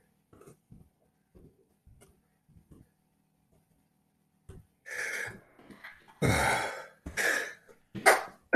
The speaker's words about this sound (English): Wow, that was like a half a sneeze. Where'd the other half go?